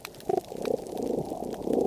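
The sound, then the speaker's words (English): Deep, rasping grunts from fish underwater, a rough low rumbling broken by short throaty pulses, with faint crackling clicks scattered through it. It grows slightly louder toward the end. “And then grunting, deeper, rasping sounds.”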